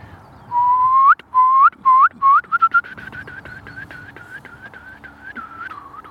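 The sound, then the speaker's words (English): A person whistles an imitation of a curlew song: long rising whistles that quicken into shorter notes, then break into a rapid bubbling warble that fades out. Clear, with no talking. “I could maybe whistle it. How does the curlew? So a curlew would probably go.”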